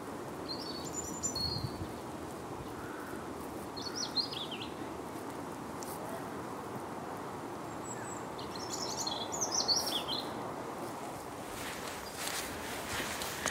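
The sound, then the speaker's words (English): Birdsong outdoors at Chapel Common on a grey bank holiday afternoon: short bursts of high chirping and trilling come and go over a steady rustling background with what sounds like footsteps on the ground. “It's still a grey day, but the birdsong has been tremendous this afternoon.”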